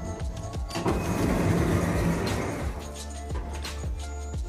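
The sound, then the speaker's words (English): Elevator doors slide open with a steady mechanical whir and low rumble that swells in the middle, then eases off into a few soft clicks and thumps. No one speaks. “Doors opening.”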